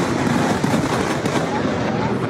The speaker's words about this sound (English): With heavy rain predicted to continue, the state is struggling with what may be the worst storm in 30 years. There are amazing scenes on social media, including this early afternoon lightning strike.